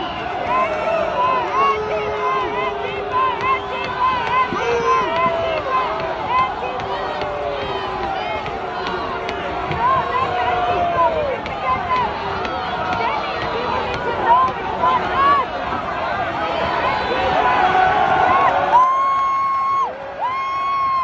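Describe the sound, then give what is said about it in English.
A large outdoor crowd of Trump supporters roars and cheers continuously as a man is pulled down to stop him smashing a window, with many overlapping shouts and whoops rising above a dense wall of voices, loud throughout, briefly swelling near the end. “And the crowd cheers.”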